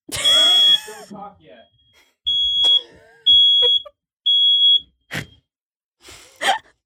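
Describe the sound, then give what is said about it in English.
A smoke alarm sounds three loud, shrill, high-pitched beeps in an even rhythm, each lasting about half a second. Someone exclaims and makes breathy vocal sounds before and after the beeps. “Is this a fire drill?”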